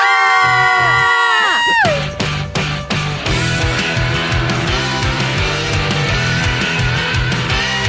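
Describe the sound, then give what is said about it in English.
Several voices let out a loud, sustained scream together for about two seconds, the pitch sliding down as it trails off, before rhythmic music with a steady beat takes over. “And if you leave us a 1-star, we're going to scream.”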